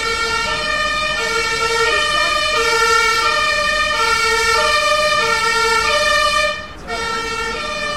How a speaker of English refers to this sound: So for people listening, there's a, I think it's an ambulance trying to get by, but there's a shit ton of traffic in front of it.